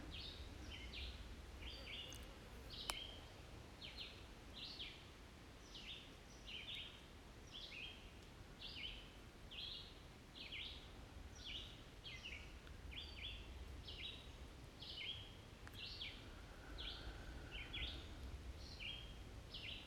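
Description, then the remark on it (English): Birds chirp steadily outdoors, short high calls repeating in quick succession over a soft, constant background of wind or rustling ambience. No one speaks. “When you find empty spaces in a podcast, remember that there's very popular podcasts out there where actually they say nothing for quite a while and then have the birds.”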